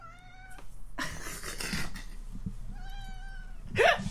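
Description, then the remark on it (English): A female cat meows several times, drawn-out plaintive cries separated by breathy, noisy stretches, ending with a sharper, louder yowl. The sound is clear, with no talking. “Alright, I think we're done terrorizing the cat.”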